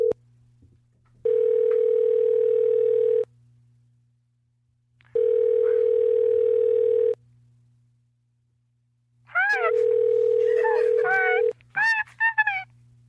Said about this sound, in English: Oh, we're gonna call her. I'll dial it up.